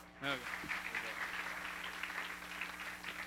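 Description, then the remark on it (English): A crowd claps steadily in a dense, continuous patter of applause that holds at an even level throughout, with a brief voice and a low hum sounding at the start. “Y'all keep clapping.”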